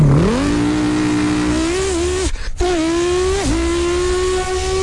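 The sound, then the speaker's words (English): A man's voice imitates a revving twin turbo R8 sports car engine, a loud continuous droning tone that climbs in pitch, briefly cuts out as if shifting gears, then surges back and holds steady. “Here he is doing various car noises. Yo, what do you do for a living? I get paid to use my mouth. Wait, what? Twin turbo R8.”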